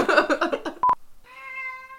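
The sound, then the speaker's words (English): A female cat meows insistently, a drawn-out wavering cry followed by a short pause and a brief sharp blip, then another long, steady meow trailing off. “Kitty, shut up. Puss hadn't been Mirandized.”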